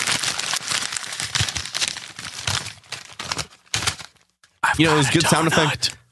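Irregular clattering and rustling bursts give way, after a brief pause, to a loud squeak of a door as someone leaves: a wavering, high-pitched creak with a bending, whiny tone lasting over a second.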